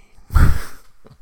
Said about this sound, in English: Yeah, I coughed right in the mic, and I am so sorry. I'm going to have to go in and fix that. I don't care about the grossness. I care about the bad audio.